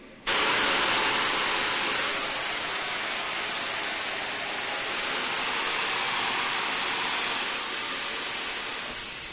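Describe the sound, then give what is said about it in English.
Southern Railway Schools Class steam locomotive number 925 Cheltenham, at a station while a goods train pulls into the down platform, blows off steam in a loud, steady hiss that starts abruptly and roars on without a break, broad and rushing, easing only slightly toward the end. “As Cheltenham blows off steam, a goods train is slowly pulling into the down platform.”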